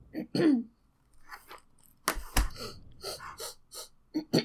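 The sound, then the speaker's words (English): A person clears their throat in a series of rough, raspy bursts, with two sharp, forceful hacks in the middle followed by several shorter gravelly rasps. “Clearing my throat, getting it all.”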